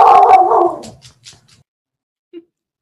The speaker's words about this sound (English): Sorry, the professor next door is an awakened dog, and he makes my life a lot harder.